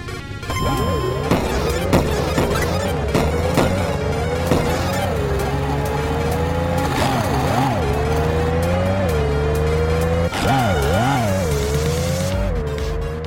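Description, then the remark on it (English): A video game car engine revs and whines continuously while loud metallic crashes and smashing impacts punctuate it several times as the car hits barriers and other vehicles, with a heavier crunching burst near the end; no one speaks. “hitting the barriers or other vehicles in modes that aren't the takedown mode will cause damage to your car”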